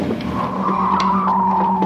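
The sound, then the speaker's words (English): A steady, high tire squeal of a car skidding in a coin-operated driving game runs over a low engine drone for about two seconds, with faint clicks and knocks underneath and no talking. “Try to keep it out of the ditches.”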